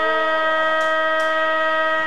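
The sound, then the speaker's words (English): A loud, steady stadium siren blares on a single sustained, buzzy pitch, ending the quarter of a football match as Eagles player Gus Paul lines up a kick for goal from about 48 metres; no talking, just a couple of brief hissy bursts partway through. “As the siren sounds.”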